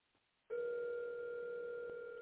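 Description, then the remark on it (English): A loud, steady electronic telephone tone cuts in abruptly after a brief quiet moment and holds unbroken, an outgoing call ringing on the line with no one answering. No one speaks. “Oh, now she don't want to answer the phone.”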